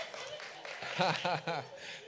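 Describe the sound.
A crowd applauds steadily with a dense wash of clapping, while voices call out and cheer over it near the middle before the applause carries on at an even level.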